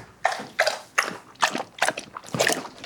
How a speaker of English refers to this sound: Okay, this is Ethel drinking water.